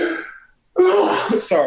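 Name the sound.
sneeze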